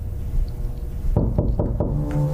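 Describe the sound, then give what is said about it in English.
Four firm, dull knocks on a door in quick, steady succession, following a second of quiet hum; a sheriff knocking at the door to serve notice. “Well, the sheriff comes to the door and is like, hey, you're being served.”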